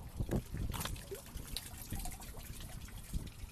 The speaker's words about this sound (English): Do you guys wanna hear the drain?